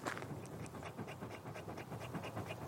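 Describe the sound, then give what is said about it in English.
A dog pants rapidly and steadily after a run on a hot early-July afternoon, quick rhythmic breaths repeating throughout with no talking, heavy and slightly raspy as if catching its breath. “She's quite panty at the moment because she just went on a run with my wife.”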